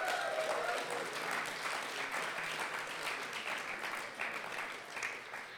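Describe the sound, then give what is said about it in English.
A crowd of people applauding together, a dense, steady wash of many hands clapping that holds fairly loud throughout and eases slightly toward the end, with a brief voice-like tone at the start. “Go ahead and clap.”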